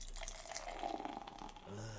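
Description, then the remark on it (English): A pale gold, Pilsner-colored beer of 5% alcohol by volume pours steadily into a glass after the top is popped, a continuous splashing gush with fizzy hiss, the tone rising near the end as the glass fills. “I'm going to pop this top. Oh, big top. Nice. And the pour.”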